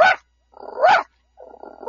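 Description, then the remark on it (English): A person imitates a small dog barking by quickly breathing in while making a singing, barking noise: three short, yappy barks spaced about a second apart, each preceded by a low, breathy rasp. Fairly loud, with no talking. “Or a smaller dog.”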